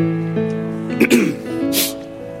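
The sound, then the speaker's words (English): A short, gruff throat-clearing rasp cuts in over a steady humming tone, followed moments later by a breathy, hissing exhale. “I was about cold, to ask yo. You if that was you clearing your throat.”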